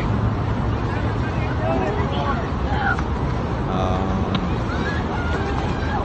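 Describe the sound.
A boat sinking amid a steady, churning roar of water and wind-like rumble that fills the whole stretch, with muffled voices and faint babble mixed into the background.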